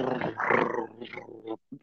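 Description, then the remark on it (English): A person makes a rough, rumbling growl with their voice, imitating food purring as it is being eaten. It holds for about a second and a half, fades briefly, then ends with a short grunt. “I really don't want to eat something that purrs at me.”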